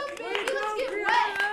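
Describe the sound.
Hand clapping sounds through a stretch of excited voices, a handful of sharp claps landing in quick succession beneath the louder, tonal chatter.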